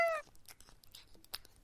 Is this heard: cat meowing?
yes